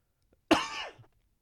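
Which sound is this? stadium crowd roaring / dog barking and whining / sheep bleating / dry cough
dry cough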